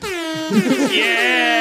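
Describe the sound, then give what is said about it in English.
A loud, sustained air horn blast played from a soundboard blares for about a second and a half, its bright, buzzing tone holding steady, with brief muffled voices audible underneath partway through. “It's right there, next to the air horn.”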